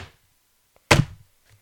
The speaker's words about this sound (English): Are you guys hearing like some footsteps? Oh no, it can't be.